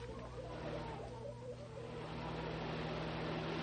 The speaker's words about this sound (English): Hey, here comes a car.